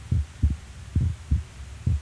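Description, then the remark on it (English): A muffled heartbeat of a dying boy, listened to with a head laid on his chest, thumps in low, steady lub-dub pairs, about three beats in two seconds, with a faint hum underneath and no talking. “Could still hear his heartbeat then.”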